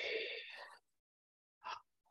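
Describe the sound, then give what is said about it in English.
A sharp, hissing inhale drawn through tightly pursed lips, like drinking through a straw, as part of a pelvic floor breathing exercise, lasts under a second. After a pause comes a brief, breathy exhale puff. Both are fairly loud, with no talking. “Yeah, so on the inhale, one example is doing a straw breathing, like you're drinking through a straw.”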